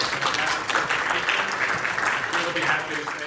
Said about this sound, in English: Give a round of applause for that.